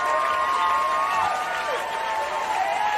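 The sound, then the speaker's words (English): Steady applause from a crowd fills the whole stretch, dense clapping with scattered cheers and whistles rising above it, loud and continuous without a break. “I definitely got to give Jalen Brunson a round of applause, man.”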